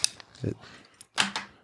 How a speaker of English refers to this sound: dramatically crumpled a can, and he's still fighting with it.